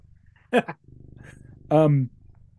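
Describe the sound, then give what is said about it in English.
A person imitates a cat's purr, a low steady rumble lasting about a second, between two short, louder voiced bursts, the last one drawn out and nasal like a meow. “I've morphed into a cat.”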